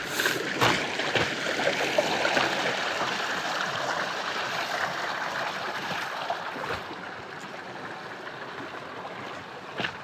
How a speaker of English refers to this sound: I am almost halfway done with California. I'm crunching on some snow. I walk over a stream.